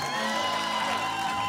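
A crowd cheers and applauds steadily, with whoops and shouted voices rising over a dense wash of clapping at an even, loud level throughout.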